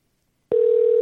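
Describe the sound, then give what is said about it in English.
After a moment of silence, a steady electronic phone tone starts abruptly and holds at an even level, the ringing of an outgoing phone call waiting to connect. “I almost forgot I was going to call you on the phone today so we get a better connection.”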